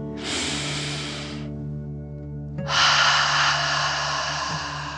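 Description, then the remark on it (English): A deep, audible relaxation breath drawn in through the nose, filling the belly, a short pause, then a longer, louder breathy exhale out through the mouth, over a soft, steady musical drone. “Breathe in through your nose, filling up your belly, and then out through your mouth, pretending you are breathing fire.”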